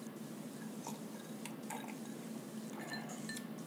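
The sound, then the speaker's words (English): A few light, bright clinks of drinking glasses touching in a toast, scattered and fairly quiet over a steady low hum, with no one talking. “Cheers, big ears. That's how it goes, big nose. Cheers.”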